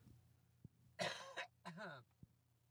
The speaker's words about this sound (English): Sorry about that. Had to cough. Getting over a decent cold. Not like a flu or anything. It was a decent cold.